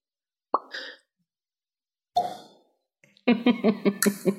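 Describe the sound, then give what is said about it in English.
Two short, hollow pops spaced well apart, followed by a louder burst of rapid, warbling pulses, performed as a Foley sound effect for a magical banishment spell that sends its target, Balleg the ravaged worm, back to its home plane. No one speaks. “If the target is native to a different plane of existence than the one you're on, the target is banished with a faint popping noise, returning to its home plane.”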